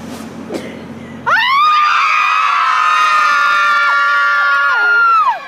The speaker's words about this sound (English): Here's a CNN report about moms who come together in a parking lot every once in a while to scream. Not exactly sure why, but let's watch and find out.